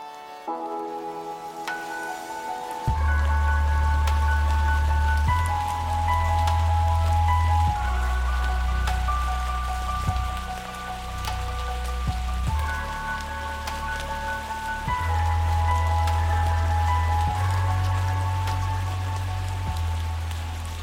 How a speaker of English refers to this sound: Then a drop of rain splashed onto my skin, followed by another and another.